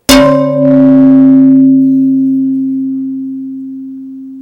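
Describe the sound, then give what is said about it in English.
A stiff carbon-fiber cap, a test piece for helmets shipped by the spin-off FiberForge, is knocked, with a sharp rap followed by a second strike, then rings out with steady, low bell-like tones that fade slowly over several seconds. No one speaks. “And you can tell it's really stiff if I bang on it a bit.”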